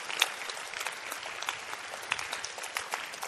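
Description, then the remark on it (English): An audience claps steadily, a dense wash of many hands producing continuous, bright crackling applause that holds an even level throughout, with no voices standing out. “It's better to clap than to just be gazing into the atmosphere.”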